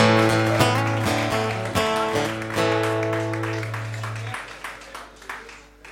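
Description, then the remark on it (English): A crowd claps and cheers as a band's final chord rings out and sustains, the dense applause continuing and gradually thinning after the music stops. “Give yourself the clap too.”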